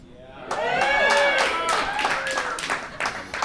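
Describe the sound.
Light, scattered applause from a small audience, a loose patter of claps lasting a few seconds, with voices rising over it near the start before the clapping thins out.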